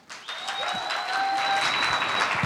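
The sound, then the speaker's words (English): An audience bursts into steady applause for one of several candidates, each given a round of applause to see who gets the loudest claps. Dense overlapping claps hold at a fairly loud level throughout, with a few thin high whistle-like tones threading over the clapping. “Now we're going to take a round of applause for each of you, and whoever gets the most loud claps can join us on the podcast.”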